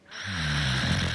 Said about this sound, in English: Nice snoring.